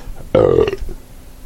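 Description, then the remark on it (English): A single loud burp bursts out abruptly and rumbles for about half a second before trailing off into quiet background noise. “I burped and then I breathed in, and it was like pure carbon dioxide.”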